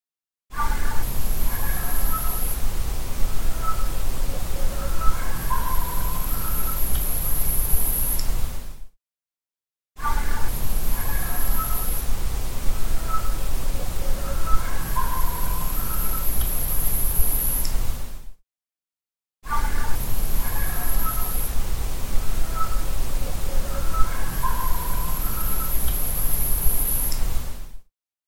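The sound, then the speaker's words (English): Short animal barks with a breathy, overblown flute-like whistle above them, set against steady hiss and low rumble; the same stretch plays three times with brief silences between. “This next clip, it has the same kind of barks, but I think it becomes a little more interesting because you can hear kind of a whistle over it, and it sounds like a recorder or a flute being overblown, if you know what that sounds like.”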